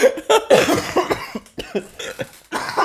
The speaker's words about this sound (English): Dude, I haven't had the hiccups in so long.